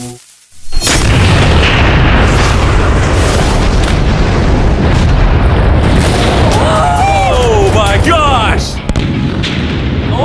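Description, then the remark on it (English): A massive explosion of a large creeper bursts in after a brief hush, then a loud, continuous roaring rumble fills the scene for several seconds, with crackling and rising whistles and faint shouts near the end. “This is going to be a massive explosion.”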